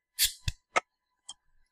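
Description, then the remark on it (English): Beer bottles being opened: a sharp cap pop with a brief fizzy hiss, then a few more quick clicks and snaps at irregular intervals, all fairly quiet, with no talking. “We have bottles instead of cans, so we're going to have to make do with those.”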